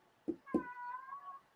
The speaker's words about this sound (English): My cat's upset with that pick. I don't know if you heard him right there. He's upset right now.